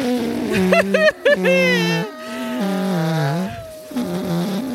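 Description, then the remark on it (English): A voice imitates a long, sputtering fart, a buzzing low tone that wobbles and bends in pitch for several seconds with brief breaks, loud and alone. “And then he farts. Yes. He seals the deal with ripping hearts.”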